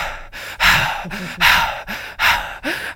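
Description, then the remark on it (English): A voice imitates a film character's heavy, stressed breathing in a scene without music as tension mounts: loud, rapid gasping breaths in and out, about five or six in a quick uneven rhythm, with no talking. “there's almost like 5 minute, almost 10 minute shots sometimes where it's somebody having to do something and all you can hear is their breathing. And as things get more fucking stressed out, you hear...”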